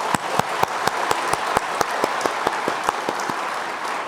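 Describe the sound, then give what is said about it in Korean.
A church audience applauds for its youngest member church, with steady, dense clapping, with sharp individual claps standing out above the crowd's rapid patter, moderately loud and with no voices heard. “예, 종모두 박수 좀 쳐주시죠.”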